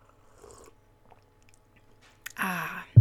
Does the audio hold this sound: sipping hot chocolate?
yes